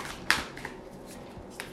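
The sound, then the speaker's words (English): A short burst of tarot cards being shuffled for a yes-or-no reading, followed by a few soft papery ticks and one more brief flick near the end, with no talking over it. “If I could shuffle, that would be nice.”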